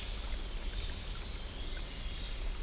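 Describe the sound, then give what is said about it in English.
Ducks paddling in their pool by a riverbank during the day: a steady, soft wash of lapping and trickling water with a low rumble underneath, fairly quiet and unchanging throughout, with no voices. “The ducks swim in their pool.”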